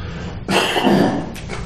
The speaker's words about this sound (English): I was coughing.